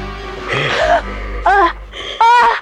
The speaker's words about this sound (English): What makes this scene effective is that the atmosphere is generated by not much happening. Just the sound of Myers breathing and his stillness is enough to create tension, and when Myers does move, it makes the scene that much more scary.